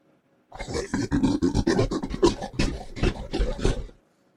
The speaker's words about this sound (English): Warthog? Yeah, warthog. No, no, it was gorilla.